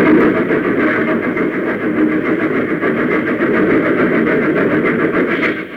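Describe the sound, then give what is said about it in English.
A train engine rushes into a snow shed built over the track, a loud, continuous rumble with rhythmic chugging pulses that hold at the same level throughout, with no voices. “Nearer and nearer it came, until finally the engine rushed into the funnel, and one by one the cars followed.”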